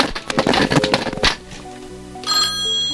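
A short stretch of clattery, rattling noise gives way to a payphone's bright, metallic bell ringing steadily near the end. No voices are heard.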